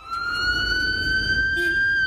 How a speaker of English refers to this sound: Freaks me out. That is an ambulance sound. And all I'm hearing when I hear that is someone's dying, get out of the way.